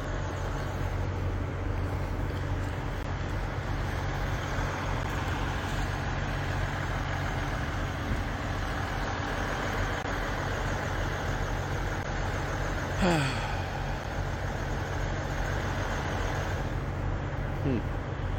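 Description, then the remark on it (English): A steady, dense rumble of idling truck engines at a convoy protest fills the scene without letup, with indistinct background voices and a brief sliding tone partway through. “Anyway, we're going to wander on down to the trucks there and see what's going on.”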